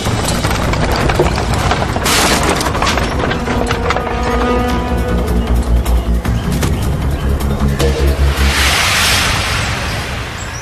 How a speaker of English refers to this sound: A broken front axle. The Donner Party stops to make repairs near Truckee Lake.